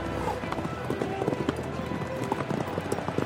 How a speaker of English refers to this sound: As the starter lowered his flag, the horses raced off, with the spectators who'd ridden out to see the start riding along behind them. And the race starts, and they're both competing from the onset.